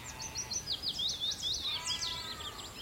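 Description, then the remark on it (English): A willow warbler sings on a hillside, a clear, high cascade of liquid, dripping notes that tumble downward in quick phrases, over a soft outdoor background hum with no talking. “Sort of dripping notes.”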